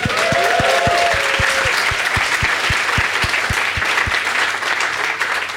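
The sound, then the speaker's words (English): An audience bursts into sustained, loud applause for someone naming a cast member, lasting the whole stretch, with a steady rhythmic thumping underneath and a brief whoop near the start. “I love that you guys applauded for that, because that was one of the easiest.”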